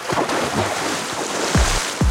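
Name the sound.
loud splash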